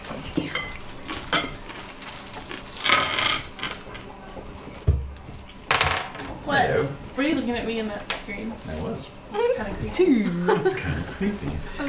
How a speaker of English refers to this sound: go ahead and give me a d20 roll.